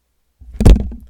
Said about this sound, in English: Did you hear that? That was him slapping the absolute shit out of you.